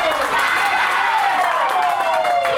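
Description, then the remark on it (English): A dense cricket crowd, with supporters of both Northern District and Western Suburbs on their feet at Mark Taylor Oval after a super over finish, roars and cheers continuously at a steady, loud level, with a broad wash of voices and some clapping mixed in, sustained throughout. “A superb effort in the field, and have a listen to this crowd, both sets of supporters, Northern District and Western Suburbs supporters, on their feet here at Mark Taylor Oval.”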